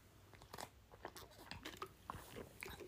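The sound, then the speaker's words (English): Someone drinking water: a quiet, irregular run of wet sipping and gulping mouth sounds, with short clicks and swallows over about three seconds and no talking. “give me one second, let me drink some water.”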